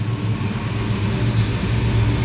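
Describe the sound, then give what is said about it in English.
A car drives past, its engine rumbling steadily, a continuous low droning hum with road noise that holds at an even loudness throughout, with no one speaking. “And let's wait for the car.”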